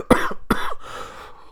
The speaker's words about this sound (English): There's a little bit of that cough from that sickness I was telling you guys about.